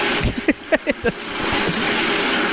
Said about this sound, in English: So, this one's kind of hard. It's a dishwasher.